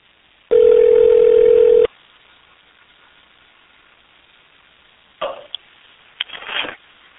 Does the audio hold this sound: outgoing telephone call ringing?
yes